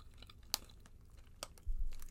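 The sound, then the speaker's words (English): Crisp crunching bites close to the microphone, a few sharp snaps spaced irregularly over soft chewing noise, fairly quiet overall with no talking. “You know, when you eat on a microphone and you let people hear you chewing and weird shit.”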